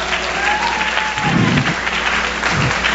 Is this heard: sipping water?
no